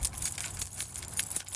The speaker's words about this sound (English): You know what else I can do? I can jingle my keys and he'll come out. I think.